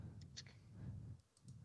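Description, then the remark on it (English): A handful of quiet, sharp mouse clicks in a green tree python hatchling room, spaced irregularly in two small bursts, over a low steady hum. “I'm clicking here. You just hear mice clicking.”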